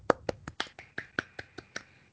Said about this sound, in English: So, golf clap.